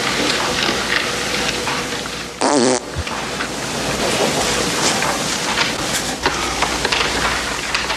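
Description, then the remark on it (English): In a film scene, a loud, brief fart erupts about a third of the way in, a single buzzy blast over a steady, noisy background hiss; no one speaks. “So, Fitzhugh blames the fart on the guy next to him, whom he also works with.”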